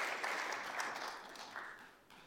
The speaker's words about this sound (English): Thank you, helpers. You can go and grab a seat again. Thank you. Give him a clap.